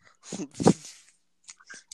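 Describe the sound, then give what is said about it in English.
A dog named Zeus bites off pieces of a stick, chewing and eating them: two loud, splintering crunches, then a few softer, irregular chewing clicks with brief pauses between them. “Like, literally, he's biting off pieces of a stick and chewing them up and eating it.”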